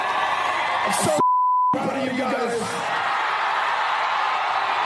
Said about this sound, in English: The most pathetic thing about that isn't that he used the F word in public. It was the reaction from the crowd. Like, that's somehow special, right? And they go crazy.